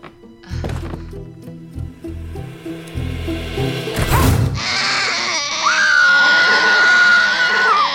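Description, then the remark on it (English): A few heavy thuds and crashes give way to a long, loud, strained goat bleat from a goat in a movie, holding for several seconds, piercing, with no talking. “There's a goat in the movie, guys. And the goat overshadows everybody.”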